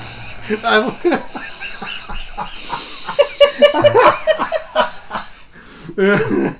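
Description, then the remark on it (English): A voice imitates heavy breathing after a theatrical line, with a run of rapid, exaggerated breathy huffs and gasps mixed with bursts of laughter. “You have to breathe heavy after.”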